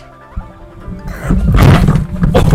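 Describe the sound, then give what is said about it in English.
A microphone cord being tugged: a soft thud, then about a second later loud, rough scraping and rumbling handling noise that continues to the end, with no voices. “The microphone. You're pulling the cord.”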